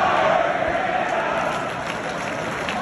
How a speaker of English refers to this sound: And the crowd is chanting to fire Matt Canada. Let's see if we can hear it.